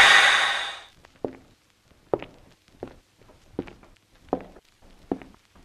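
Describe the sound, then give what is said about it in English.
Slow, deliberate footsteps of people walking, about six evenly spaced steps at a measured walking pace, clear, following a brief breathy rush of noise at the start. “Looks like we're gonna keep walking.”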